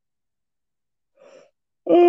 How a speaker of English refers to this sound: Oh, so the cold air is making me yawn.